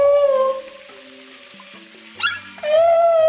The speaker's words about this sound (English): From the depths, it makes a sound that you can hear through the hull of a ship. It's a humpback whale, and it's the time now of their breeding season.